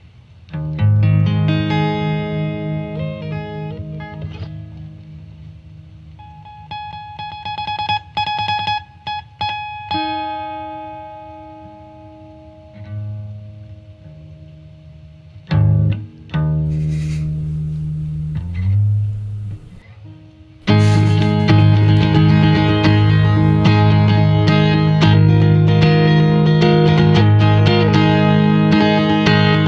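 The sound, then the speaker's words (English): A home recording, made on a phone set on a bed, of the player's first song written for guitar: an effects-laden electric guitar plays sustained, ringing notes with a distorted, chorus-like shimmer, then swells into a louder, denser strummed passage for the final stretch. No one speaks. “That's the very first thing I ever recorded for the very first like song for the guitar I ever wrote.”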